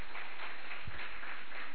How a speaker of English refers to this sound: Hallelujah. Clap your 2 hands together for Jesus.